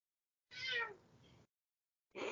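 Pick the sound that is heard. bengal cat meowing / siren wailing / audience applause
bengal cat meowing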